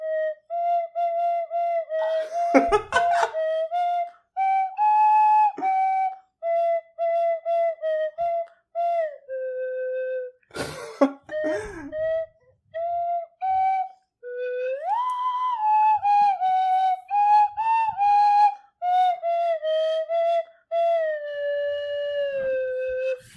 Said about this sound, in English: I've been trying to learn how to do … with this. With the slide whistle?